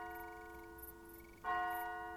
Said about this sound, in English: He paused in his wanderings as he heard a clock, somewhere in the distance, begin to strike the hour.